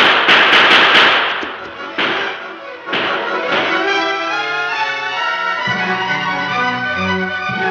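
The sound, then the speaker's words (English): A rapid burst of sharp gunshots as outlaws fire while taking cover, then a few scattered louder shots a second or so apart as the Lone Ranger and Tonto return fire, before dramatic music swells up and carries on alone. “The outlaws fired as they took cover. The Lone Ranger and Tonto quickly returned their fire.”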